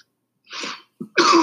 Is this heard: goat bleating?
no